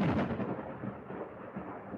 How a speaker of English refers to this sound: And Caster will look around at the sound of thunder. It will actually not be a sound of thunder. Off in the distance, up north, there seems to be some sort of large cave-in, which will rumble the ground.